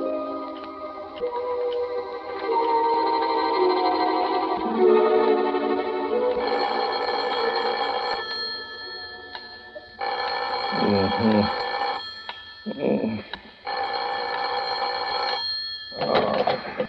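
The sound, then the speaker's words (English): A telephone bell rings in a prison warden's office, in several long, loud bursts separated by brief pauses, with a steady tonal hum filling the space before the ringing starts. “You better phone the warden to make sure, though, Governor.”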